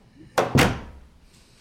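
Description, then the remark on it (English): A door swings shut with two quick, solid thuds close together, the second heavier, followed by a short fading rumble and then near silence. “Felix closes the door.”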